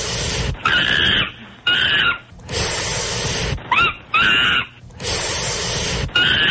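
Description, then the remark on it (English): A played recording of monkey calls, Monkey Number 7 from 12 Monkeys: loud, harsh calls ring out in repeated bursts, each a shrill, wavering screech with short gaps between, raw with no talking over them. “I do have a quote from Monkey Number 7 from the Monkey Number 7 from 12 Monkeys?”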